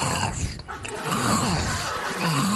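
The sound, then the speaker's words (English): A voice imitates an antelope grazing for The Lion King, with a steady stream of rough, breathy snuffling and low grunting, noisy and sustained for a couple of seconds without words. “Wait, but so you went in, they had … come in, and then you, and they said, hey, can you do an antelope grazing?”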